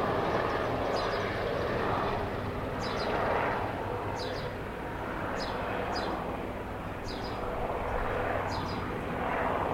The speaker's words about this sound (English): Oh, there's an aeroplane in the background there. Listen.